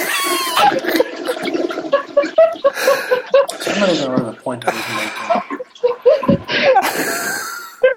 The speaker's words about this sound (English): I wasn't serious. You didn't actually have to flush the toilet.